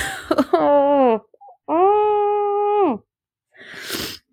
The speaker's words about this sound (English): Oh my god, you do not need to hear me just sniffling like that. Okay, I guess I'm not sneezing.